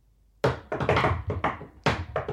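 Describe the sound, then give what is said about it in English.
A rhythmic series of about eight firm knocks on the door of a home, a secret knock grouped in an uneven pattern, fairly loud, with no one talking. “I have to do the secret knock to open the...”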